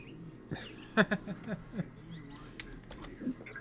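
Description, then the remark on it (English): A bird chirps faintly in the background with a few short, high squeaky calls, scattered among soft clicks and taps and muffled, indistinct voices. “Can you guys hear that bird?”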